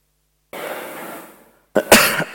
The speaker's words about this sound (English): Sorry, I've been sick, so if I start coughing or start spluttering, please forgive me.